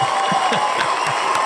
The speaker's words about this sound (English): Of course, we need some cheering.